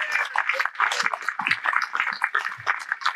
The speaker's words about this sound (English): I would like us all to give all of ourselves a round of applause for getting through 3 years and being here all again.